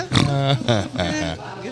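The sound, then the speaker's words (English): A person makes pig-like snorting, oinking noises, a few voiced bursts in quick succession, fairly loud, imitating a pig. “I think a snort's coming.”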